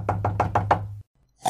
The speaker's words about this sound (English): But just then there was a rap on the door.